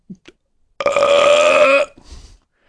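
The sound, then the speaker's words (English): A single loud, drawn-out burp lasting about a second, resonant, followed by a softer rumbling tail. A couple of faint mouth clicks come just before it. “But before I could excuse him, I burped even louder.”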